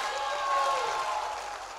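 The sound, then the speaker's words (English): An audience claps together in a dense, steady wash of hand claps that holds at a fairly even loudness throughout, with a faint voice tone mixed in underneath. “Clap your hands like we will create a multitude of influencers.”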